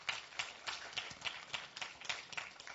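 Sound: audience clapping hands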